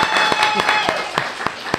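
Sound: people clapping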